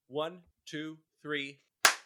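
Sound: hand claps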